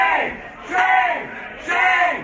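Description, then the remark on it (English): A crowd of protesters at a Mexican restaurant yells "shame" at DHS Secretary Kirstjen Nielsen in unison, three loud chanted shouts spaced about a second apart, each word swelling and then falling in pitch. “Protesters yelling shame at DHS Secretary Kirstjen Nielsen at a Mexican restaurant.”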